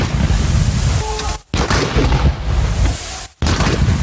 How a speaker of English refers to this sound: Did you hear those guns by any chance? A 19-gun salute. That's what they like to do when they call the election. They line up the old cannons and just go bang, bang, bang, bang, bang and fire them off.